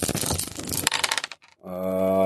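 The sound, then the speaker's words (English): A quick burst of four dice clattering and tumbling across a hard table for about a second during a tabletop game, settling into quiet before a steady, sustained tone rises and holds. “So they're rolling 4 dice.”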